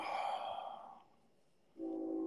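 passing train

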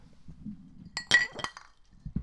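glasses clinking

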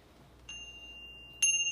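bell ding

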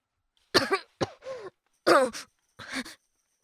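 coughing

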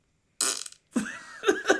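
fart sound effect

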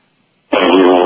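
fart

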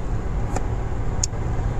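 car interior road noise

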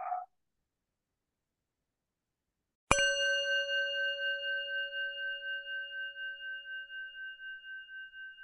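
bell ringing

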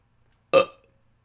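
small burp

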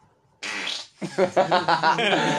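fart

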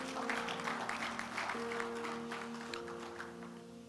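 audience clapping

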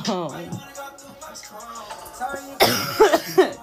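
coughing fit

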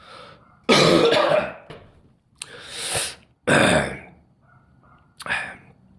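coughing

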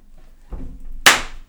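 hand clap

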